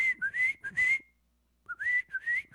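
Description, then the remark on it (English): A person whistles an imitation of the call of a little bluish-gray bird that pops up on their porch: two bursts of quick, high, warbling notes that slide up and down, separated by a brief silence. “Like, it's like bluish gray. And it'll pop up on our porch and go...”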